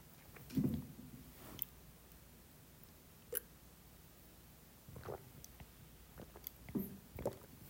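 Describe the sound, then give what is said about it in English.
Someone drinking water: a handful of soft gulps and swallows at irregular intervals, each short and muffled, with quiet pauses between and no talking. “Water break. Sorry about that.”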